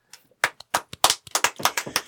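A light golf clap: about a dozen crisp, sharp hand claps in a quick, slightly uneven rhythm, moderately loud, with no one talking.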